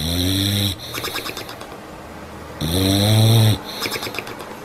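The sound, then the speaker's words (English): Two dogs snoring loudly, two long rasping snores with quieter wheezy breathing between them, with no one talking. “You also heard the two dogs snoring.”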